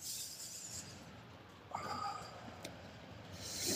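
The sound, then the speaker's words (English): Heavy, breathy panting, a steady run of rough exhales with a few sharper snorting gasps, growing louder toward the end. No one speaks. “Can't let go of the panting, man.”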